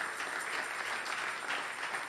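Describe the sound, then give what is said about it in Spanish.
An audience applauds steadily, a dense wash of many hands clapping at once with no pauses, holding an even, fairly loud level throughout. “Quiero que denle fuerte aplauso.”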